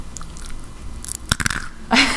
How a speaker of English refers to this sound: Maybe you crunch, can hear crunch. My chewing. Yeah, crunch, yeah. crunch. Mm, here's the crunch of an almond. Get ready.